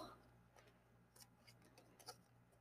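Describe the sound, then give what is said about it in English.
Tarot cards being shuffled until a card falls out, a quiet series of crisp, papery flicks and soft slaps at an irregular pace over a faint steady hum. “So, we're shuffling and waiting for a card to fall.”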